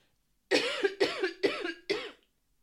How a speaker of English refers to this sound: excuse me, I'm going to cough. Hold on.